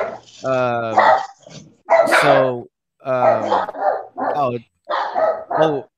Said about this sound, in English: I don't know what the hell they're barking at. It's all right. They all want to go live and be on the show with us.